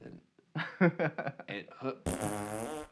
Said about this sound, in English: Yeah, add a couple of fart noises anytime there's a lull, just like right now, add a fart noise, you know.